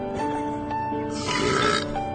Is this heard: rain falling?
no